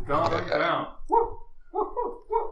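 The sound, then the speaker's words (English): Dogs bark and whine: an opening burst of rough barking, then three short, higher whimpering yelps spaced about half a second apart. “I gotta let the dogs out.”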